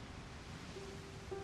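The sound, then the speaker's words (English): A soft, steady wash of ocean surf rolling onto the shore, a continuous hiss with no clear individual breakers and no voices. “As the waves slide back into the sea, disappearing into the waves, you exhale, letting the breath go.”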